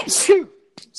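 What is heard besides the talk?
sneeze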